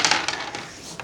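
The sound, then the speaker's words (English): Dice clatter and tumble across a hard tabletop, a quick burst of sharp clicks and rattles that slows into a few scattered taps before settling, fairly loud. “Because I don't roll dice like that.”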